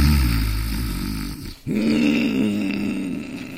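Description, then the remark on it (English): A man's loud, roaring snore from a post-operative condition, a mouth breather: a long, rough, low-pitched rumble, a brief catch of breath, then another heavy, rasping snore. No one speaks. “It's definitely a post-operative condition, and that roaring indicates he's a mouth breather.”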